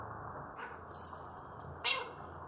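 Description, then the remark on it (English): A cat lets out a long, drawn-out meow followed by a short, sharper cry, both fairly faint against a steady rushing background like heavy rain, during a storm. “Yeah, I'm coming, kitty kitty. Stupid name for a cat.”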